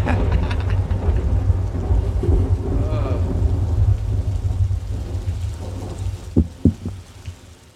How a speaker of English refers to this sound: That rain's coming down.